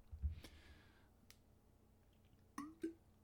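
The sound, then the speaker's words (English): Someone takes a quiet sip of water: a soft thump, a few faint wet clicks, then two short gulping swallows, with no talking. “Taking a drink of water before we talk about Wave.”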